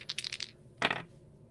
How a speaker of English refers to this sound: We'll see. We'll see what the dice have to say.